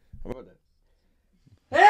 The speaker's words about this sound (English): I'm about to sneeze.